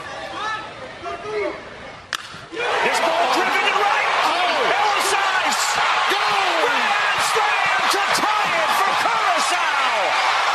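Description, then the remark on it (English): A crowd at a youth baseball game erupts into loud, sustained cheering after the sharp crack of a grand slam that ties the game, with screams, whoops and shrill whistles rising and falling over a dense roar of many voices. “They tied the game with a grand slam. Sounded like this.”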